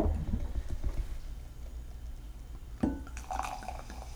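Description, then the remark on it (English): Wine pours into a glass up close, a splashy gush that settles into a gurgling, rising fill with lots of suds and bubbles, after some low handling bumps and rumble; no one speaks. “That's some good pouring right there.”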